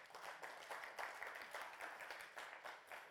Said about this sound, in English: Yeah, good place to clap. Come on.